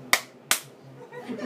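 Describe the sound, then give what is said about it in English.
Two sharp, crisp hand claps in quick succession, each a loud bright smack that decays fast, followed by a low, quiet murmur of background sound. “And then just like clapped.”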